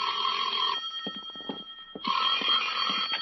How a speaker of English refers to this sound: At 10, my phone rang.